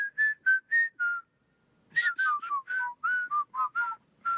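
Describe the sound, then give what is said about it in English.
Someone whistles a jaunty march tune, four crisp evenly spaced notes, a short pause, then a quicker bouncing run of notes, with no talking. “I think because he remembered in the original film there was that whole whistling sequence that was part of this old movie.”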